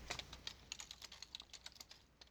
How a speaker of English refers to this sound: As you can hear, I'm typing this out, so the Sega Channel.